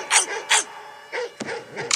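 A dog barks several times in short, sharp bursts with uneven gaps, moderately loud, heard as part of a song playing.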